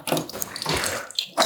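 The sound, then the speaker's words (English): Warm water runs from a tap in a steady rush with splashy fluctuations, briefly easing near the end before surging again. No voices are heard. “Here, actually, I know my mom has taught me well of warm water ways.”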